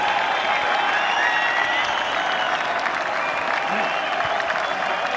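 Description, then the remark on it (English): A large golf crowd at the Open Championship gives a standing ovation as Shane Lowry and Tommy Fleetwood arrive on the green, Lowry on the point of winning: sustained, dense applause, a steady wash of clapping with scattered cheers and whistles running evenly throughout without pause. “Everyone standing, everyone applauding, as Shane Lowry and Tommy Fleetwood arrive on the green.”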